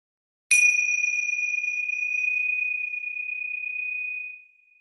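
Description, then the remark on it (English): A single meditation bell is struck once to close a meditation practice, giving a bright metallic strike that settles into a clear, sustained ringing tone which slowly fades over about four seconds. No voices accompany it. “And then gently, as a way of closing our practice, I'll just ring the bells and just listen to the sound of the bell.”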